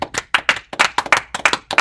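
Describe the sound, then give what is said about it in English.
Hands clapping in a quick, slightly uneven burst of about a dozen sharp, loud claps over two seconds, with no talking. “Let's clap it up.”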